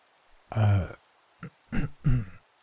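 A person coughs in rough, throaty bursts: one longer voiced hack, then a brief catch and two more short coughs, fairly loud with no talking around them.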